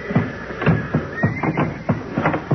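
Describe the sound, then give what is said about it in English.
Old and sick horses in their stalls neigh in panic as straw in the building is set on fire, a string of loud, shrill whinnies overlapping one another in rapid bursts about every half second, with no talking over them. “They're beginning to yell good now. I guess they know what's up.”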